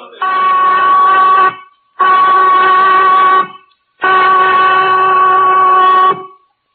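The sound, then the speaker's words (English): A loud, steady prison whistle blows three long blasts at Christmas, signaling lights out in 15 minutes, each held about a second and a half with brief gaps between, its tone harsh and piercing with no voices over it. “The prison whistle, Johnny, cutting Christmas out of the air like a knife.”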